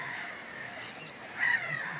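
Harsh, raspy calls of common gulls sound over a steady noisy background, with one louder, sharper cry standing out near the end, and no voices.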